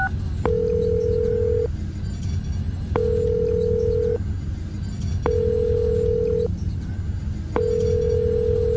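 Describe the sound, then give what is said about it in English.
A cell phone call rings out on the line: a steady electronic ringback tone repeats four times in even pulses, each about a second long with short gaps, over a low background hum. “He finds one of his cell phones in the pocket of his bathrobe and calls Alfred.”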